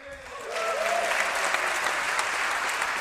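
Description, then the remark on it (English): A large audience at the Wisconsin governor's State of the State address breaks into sustained applause, the clapping swelling within the first half second into a dense, steady wash of hands that continues without pause. “I mean, it was, I think, what you'd kind of come to expect, you know, a lot of applause on items.”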